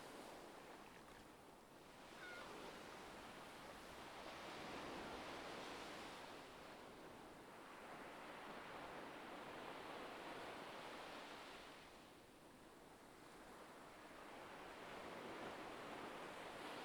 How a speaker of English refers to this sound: Seagulls soar overhead, their calls blending with the sounds of the winter sea.